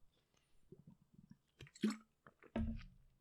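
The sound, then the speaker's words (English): A person drinking water during a short break: soft mouth clicks and small sips, then a louder gulp and a wet, breathy swallow near the end, with no talking. “Because, 1 second, water break.”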